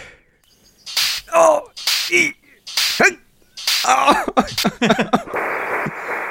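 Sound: whip crack sound effects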